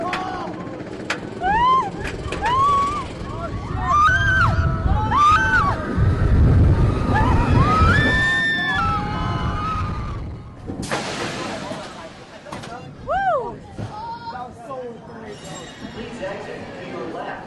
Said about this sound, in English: And yes, that was her you heard screaming on the roller coaster at the end there.